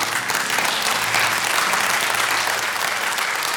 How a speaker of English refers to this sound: I don't know who started clapping, but I owe you lunch this week if you'll let me know after church, amen.